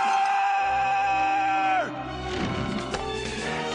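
A man lets out a loud, sustained high-pitched scream for nearly two seconds before his voice slides sharply downward, followed by rough, breathy vocal noise.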